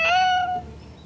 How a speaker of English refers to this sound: When we gave our podcast presentation to the students, one student wanted to do a podcast with her very vocal cat.